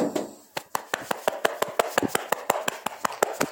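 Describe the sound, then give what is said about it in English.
Rapid, regular thumps, roughly a dozen dull hand-beats on a chest, pulsing steadily like helicopter rotor blades. The narrator thumps on his chest to imitate a 'double happiness helicopter' hovering above the house, with no speech. “That's either the narrator thumping on his chest...”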